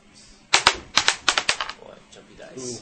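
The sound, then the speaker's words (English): Several sharp, rapid clicks and clacks in a quick irregular burst as dice, including a six-sided die rolled for damage, bounce and clatter across a hard table, followed by a faint voice murmuring afterward. “Boy, jumpy dice.”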